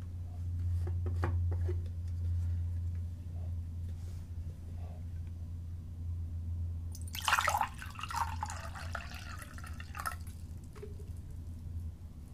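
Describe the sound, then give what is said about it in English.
Water is poured into a container for a few seconds with a bright, splashy rush, preceded by a few faint drips and clicks, all over a steady low hum. “and fill it with water.”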